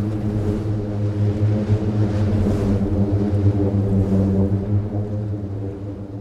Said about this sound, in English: you walk on the dune and it sounds a bit like a bad played tuba, sort of. In the literature, they talk about this being a burping sound, but I think it sounds more like a badly played wind instrument.